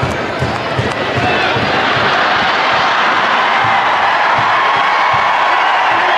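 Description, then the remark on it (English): A big stadium crowd roars continuously at a dog running loose across the field during a game, a dense wall of cheering and shouting that stays loud and steady throughout, with scattered whoops rising out of the mass. “And yes, the crowd was roaring, partially because it was entertaining, partially because it was the most excitement the game had had entirely to that point.”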